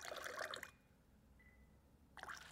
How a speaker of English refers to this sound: We have pretty cold tap water here. You do want pretty clean water. New York City gets its water from here in this area and from our reservoirs, and it's really good. So we're just going to slowly dribble water into the glass.